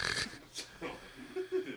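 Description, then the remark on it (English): Heavy, rasping breaths come in short noisy bursts, fairly loud, with grunting vocal sounds between them, from a preacher straining and gasping mid-sermon. “Pastor breathing is crazy, bro.”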